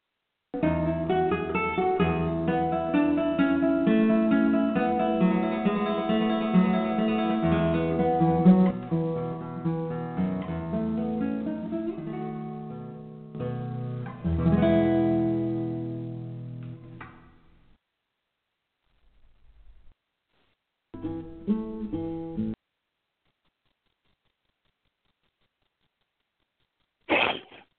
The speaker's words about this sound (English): I think we lost each other for a few minutes, but we are back on the air tonight.